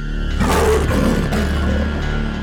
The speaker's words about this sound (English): That smooth smile broke for a moment as she roared, "Fight for it!"